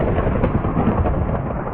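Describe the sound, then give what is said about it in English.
A steady, dense rumble of thunder rolls through a storm that a player has switched on with weather controls in a video game, loud, with a broad low roar and no clear breaks, with no voices. “I just thought I would make it rain and thunder.”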